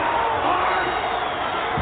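A large crowd roars steadily throughout, a dense wash of cheering and clapping for special guest referee Sid Justice that stays loud and constant, with no single voice standing out.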